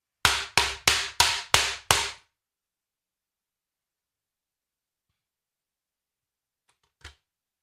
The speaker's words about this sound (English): Okay, I broke my keyboard. No big deal. Got an extra.